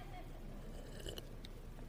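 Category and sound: human body sound, sipping water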